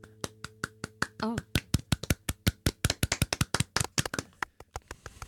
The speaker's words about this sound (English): Hey, everybody. Thank you for being here. The applause goes to you.